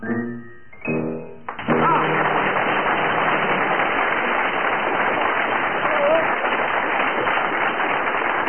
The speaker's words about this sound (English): That burst of applause puts Willie in an unbeatable position